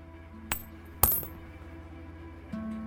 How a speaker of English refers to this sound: The woman dropped two tiny coins into the treasury.